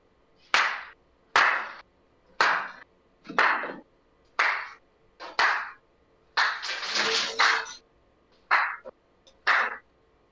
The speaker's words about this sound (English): We do like a slow clap thing.